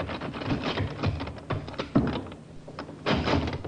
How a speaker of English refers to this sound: The sergeant tried the door.